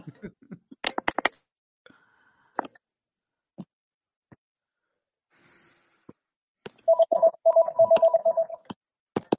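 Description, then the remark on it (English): An iPad's incoming-call ringtone chimes in a quick, steady electronic pattern near the end, preceded by scattered taps and clicks. “Somebody's calling me on my iPad.”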